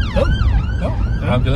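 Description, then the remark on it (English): An ambulance siren wails loudly, its pitch sweeping up and down in quick cycles over a heavy low rumble of traffic as it passes. “Ambulance.”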